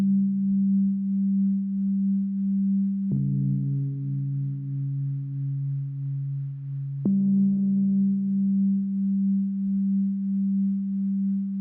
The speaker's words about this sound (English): This is getting interesting. Yeah. I love the drama of this. I feel like I'm walking into like a gallery space and there's just like these ambient tones.